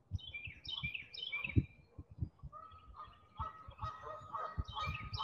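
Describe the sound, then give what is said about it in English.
Geese honk repeatedly in overlapping, raucous calls behind the speaker, with a busy flock chorus building toward the end and some low rumbling thumps underneath. “The geese are making quite a stir behind me.”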